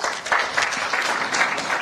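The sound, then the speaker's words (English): Steady applause from an audience at an event, a dense patter of many hands clapping continuously at moderate loudness with no voices standing out, applauding the event's sponsors. “Another round of applause, please.”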